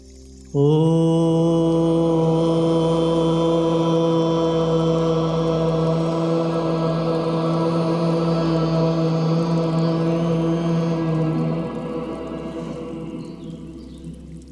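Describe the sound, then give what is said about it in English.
A group chants a single long Om to honor the earth element, a steady, resonant low hum held for about eleven seconds before easing into a softer, fading tail. No one speaks. “Let us honor the earth element by chanting Om.”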